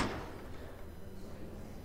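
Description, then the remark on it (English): The heavy door of a crucible bell thuds shut with a single dull impact and is barred, followed by a low, lingering rumble that slowly fades, with no talking. “The door is shut behind them and barred.”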